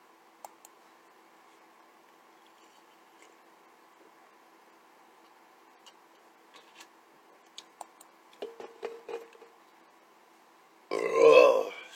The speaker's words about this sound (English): I burp so much.